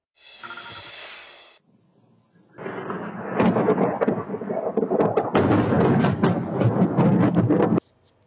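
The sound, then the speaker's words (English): A brief hiss gives way to a loud crack of thunder, following a flash of lightning during a night-time thunderstorm in the Fraser Valley. It rolls into a long, crackling rumble for several seconds before cutting off abruptly. “This video coming from a global viewer showing a flash of lightning followed by the rumbling thunder.”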